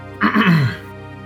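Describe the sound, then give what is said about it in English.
A single loud, deliberate throat clearing lasting about half a second, a rough guttural rasp that slides downward in pitch before fading into quiet. “I'm just gonna clear my throat very loudly, just...”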